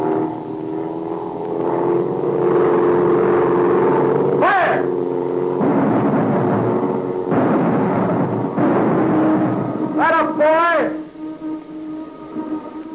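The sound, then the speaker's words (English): A propeller airplane's engine drones steadily as the plane swings in a circle, its pitch shifting as it banks, with sharp rising whines breaking through as it dives and swoops. “The plane is swinging in a circle. It's banking, getting ready to dive.”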